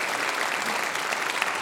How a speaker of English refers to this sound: So give these artists a great big round of applause. They did great.